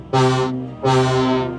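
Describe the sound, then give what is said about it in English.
The horn of Diesel, a small six-wheeled diesel shunting engine painted black with red buffers on the island of Sodor, sounds two loud, deep, brassy blasts: a short one followed by a longer, steady one. No voices are present. “Diesel has a horn which sounds like this.”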